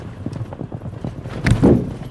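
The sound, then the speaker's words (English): Rapid hoofbeats of riders' mounts cantering alongside a truck, a steady rhythmic clip-clop of several hooves pounding together, growing louder with a heavy thudding burst toward the end. “Riders waved their tridents in frustration as they cantered alongside the truck.”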